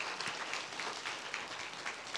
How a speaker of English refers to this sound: Can we give our worship team a hand clap? Don't they do an amazing job?